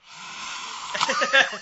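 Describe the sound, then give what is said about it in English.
A person imitates a cat's hiss: a sustained, breathy hiss for about a second that turns into a rougher, voiced snarl, moderately loud. “And then all of a sudden for a cat to go...”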